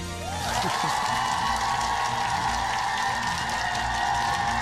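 A crowd breaks into steady, loud applause welcoming contestants onto a stage, swelling within the first half second and holding, with a sustained whooping or cheering tone riding over the dense clapping.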